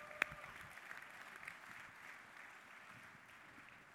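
An audience applauding: many hands clapping in a steady, even wash that fills the whole clip at a fairly soft level, with one sharp, louder clap standing out right at the start.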